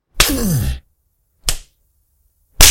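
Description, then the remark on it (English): Three sharp whip lashes at uneven intervals as a man whips himself in self-flagellation inside a ship's lavatory, the first overlaid with a pained, falling grunt or groan; the last crack is the loudest and brightest. “The grunts were unmistakably those of Jorge Robles, the ship's eccentric, extremist pagan. Self-flagellation. Robles was whipping himself.”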